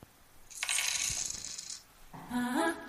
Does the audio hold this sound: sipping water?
no